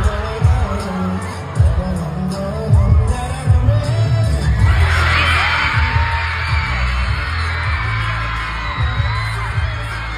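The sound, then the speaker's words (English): Heavy, pulsing bass thumps under a dense wash of noise, then about halfway through a concert crowd erupts in loud screaming and cheering as a VTuber reveals his eyeballs, holding to the end. “Okay, so the VTuber showed his eyeballs, and then people in the crowd lost their minds.”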